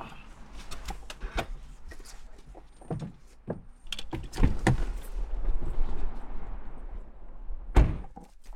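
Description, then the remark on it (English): A car door is opened with a series of clicks and dull thunks, then slammed shut with one heavy bang near the end. No one speaks. “got out of the car and began pacing back and forth with a cigarette.”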